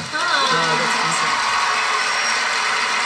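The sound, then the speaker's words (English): An audience claps and cheers steadily for a singer's piano performance, a dense wash of applause with scattered whoops and shouting voices rising through it, holding at a loud, even level for the whole stretch. “And once the crowd stops clapping, the music itself will be much nicer sounding.”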